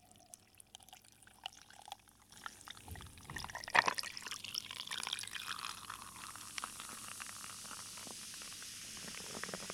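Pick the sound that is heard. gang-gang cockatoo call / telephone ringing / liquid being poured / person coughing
liquid being poured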